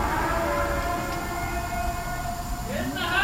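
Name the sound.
tornado warning siren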